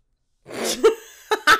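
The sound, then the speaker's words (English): A strange, broken-up sneeze: a breathy intake, then several sharp bursts with a squeaky, high-pitched catch at the end, fairly loud and heard on its own without talk. “That was the weirdest sneeze ever.”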